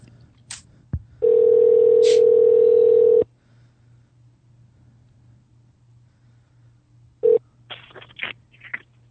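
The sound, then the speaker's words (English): A loud, steady telephone dial tone hums for about two seconds, then after a pause a quick series of short keypad beeps and clicks as a number is dialed to call a guest on a cell phone for the Jimmy Star Show. No one speaks. “So we're going to call her now.”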